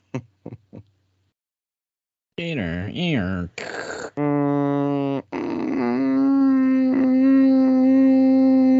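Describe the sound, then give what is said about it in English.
A voice imitates Jim Carrey's grating, nasal 'most annoying sound in the world' from Dumb and Dumber: a few brief clicks, then wavering whiny tones that break into a loud, flat, buzzing drone held steadily for several seconds. “The most annoying sound in the world.”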